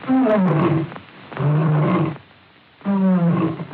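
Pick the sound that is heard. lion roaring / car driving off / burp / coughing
lion roaring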